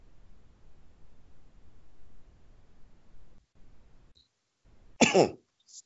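A single sharp, loud cough bursts out close by after several seconds of low, muffled background rumble and a brief quiet gap.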